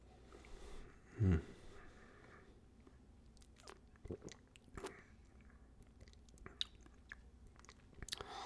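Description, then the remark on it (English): Mouth noises of someone taking a second taste of whisky: one louder slurp near the start, then scattered quiet wet smacks and clicks of the tongue over a hushed background, no talking. “Let's try another second taste.”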